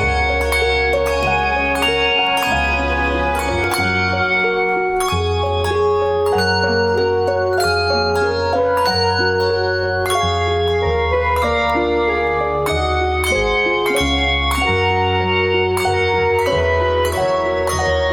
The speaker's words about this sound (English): And how many bells are involved? I think that one there was probably around 25.